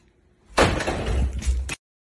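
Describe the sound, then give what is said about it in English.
A door moves on its own, swinging and scraping loudly for about a second, a rough, rattling rush of noise that starts abruptly and cuts off just as suddenly, with no voices around it. “Not only did she freeze, she started backing up as soon as that door moved.”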